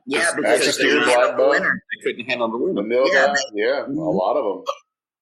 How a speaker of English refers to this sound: I'm so sorry. Stop hiccuping into the microphone. I didn't mean to.